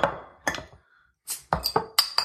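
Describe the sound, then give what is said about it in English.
Sharp clinks and knocks of glass, a brief fizzy hiss like a bottle cap coming off, then more quick ringing taps as a River Ale beer is opened and poured. No voices. “So let me see if I can find anything about that brew while you guys open it and pour it.”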